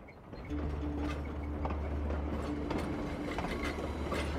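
An overnight train travels to Los Angeles late on a Saturday night, rolling along the tracks with a steady low rumble and a faint mechanical hum, punctuated by intermittent clacks and rattles. No one speaks.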